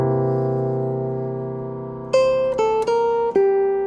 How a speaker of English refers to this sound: So these two tones are clearly part of that C7.